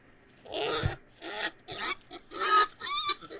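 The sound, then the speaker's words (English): A pig grunts and oinks in a quick series of about six rough, snorting bursts, fairly loud, ending on a higher squealing note, with no one talking. The pig is a stray that turned up along Judge Ben Allen Road in Carter County. “In Carter County, authorities were on the hunt for a pig's owner after it turned up yet again along Judge Ben Allen Road.”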